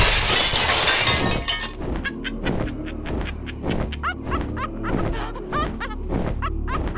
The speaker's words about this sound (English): Stay away from us, Domingo wanted to say, but as the words formed on his tongue, that slow figure outside his window crashed through the glass.